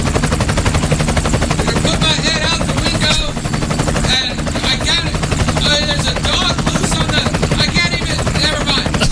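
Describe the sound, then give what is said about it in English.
Helicopter rotor blades of the Chaotic Radio traffic helicopter whir loudly and steadily, a dense, pulsing chop that fills the whole recording, with muffled voices faintly audible underneath. “Dutchie likes to hear the blades whisping, he said.”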